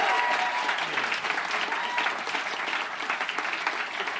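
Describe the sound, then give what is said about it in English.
Steady audience applause, a dense wash of many hands clapping at an even level throughout, with a few brief tonal murmurs but no clear talking. “Yeah, Mason, a big round of applause.”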